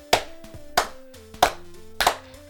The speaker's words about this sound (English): Oh, the purpose sorry. Of the claps are for me to sync the audio in post.